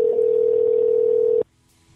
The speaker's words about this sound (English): Calling the phone of a drunk person. Drunk mojo jackhole person.